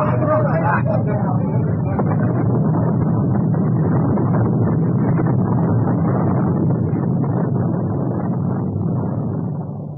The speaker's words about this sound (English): The once proud Morning Star slid beneath the waves, her boilers bursting in her last dying gasp of defiance.